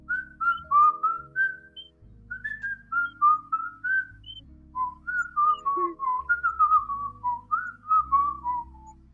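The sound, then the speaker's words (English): A person whistles a bouncy melody over a steady low musical backing, the notes sliding and trilling in quick phrases that rise and fall throughout. “That was a good little whistle you did there, okay?”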